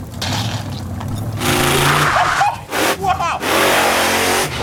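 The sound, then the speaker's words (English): Loud engines of big trucks out back of a home rumble and rev steadily, their throaty roar surging and briefly dipping midway before building again to a sustained growl. “And out back is where the big trucks will go.”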